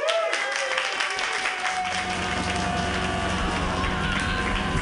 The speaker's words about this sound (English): So you guys have to be really special right now and clap even bigger than you've clapped before